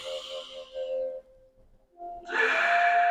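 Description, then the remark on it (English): A slow, deep breath drawn in, a brief pause, then a louder, airy breath pushed back out. No one speaks. “Whenever you have anxiety and you feel like everything is just moving too quickly, you can't handle it, you're getting anxiety, you're getting anything, always step back and breathe.”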